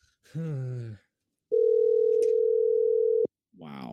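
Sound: phone ringing tone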